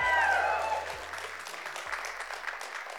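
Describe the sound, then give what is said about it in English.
An audience claps steadily for about three seconds, a dense wash of many hands with a brief burst of cheering or whooping at the start before settling into even applause. “How many will clap for anything?”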